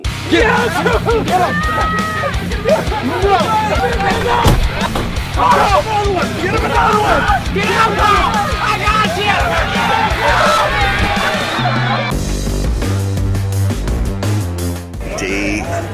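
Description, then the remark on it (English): A 10-hour "Man Screaming" recording played in place of a phone alarm sound: a man screams and yells loudly and continuously, his voice straining over a noisy, crowded background of other shouting voices, before the sound shifts abruptly near the end. “They didn't like the phone alarm sound, so now I'm playing Man Screaming for 10 hours.”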